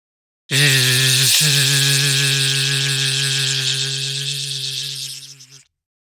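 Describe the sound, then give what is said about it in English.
An electric toothbrush buzzes steadily for about five seconds, a loud, even motor hum with a brief hitch early on before it fades out at the end. “Toothbrush electric.”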